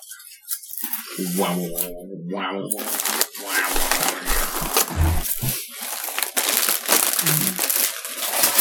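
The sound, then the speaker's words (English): Loud, dense crunching of sour cream and onion potato chips from a bag, crackly bursts coming in quick irregular succession for the whole stretch, with a brief voice sound near the start. “A bag of us potato chips. And the sour cream and onion flavor.”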